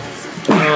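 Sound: sneeze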